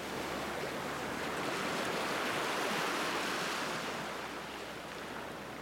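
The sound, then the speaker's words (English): Ocean waves wash steadily onto a sandy beach in a continuous broad hiss of surf that swells slightly in the middle and eases toward the end. No voices are present. “I was laying face down in the sand.”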